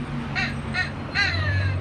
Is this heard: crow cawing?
yes